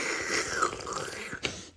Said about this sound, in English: We're drinking our cocktail here. Yep. Friends, I'm going to put up the full recipe. Let me take a little sip here. Yeah. I like to make noise when I sip on the radio. So here we go.